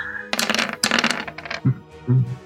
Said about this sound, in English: 13 on the dice, gonna be a hit. And roll the damage.